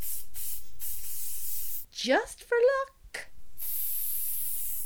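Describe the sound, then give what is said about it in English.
A disinfectant spray bottle hisses in long, steady bursts, one before and one after a short spoken phrase, fairly loud, with a breathy misting sound, sprayed as a topping onto a pancake. “Finally, that extra spray of disinfectant.”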